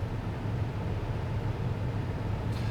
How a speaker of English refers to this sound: Just a mail truck.